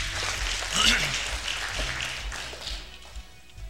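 A church audience claps for the Lord during a morning service in a dense, steady wash of many hands that gradually thins and tapers off, with a few faint voices mixed in underneath.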